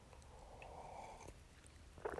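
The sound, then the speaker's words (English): A quiet sip of coffee: a soft sustained slurp for about a second, a pause, then a brief faint clatter or swallow. No one speaks. “So I'm going to take a coffee sip here.”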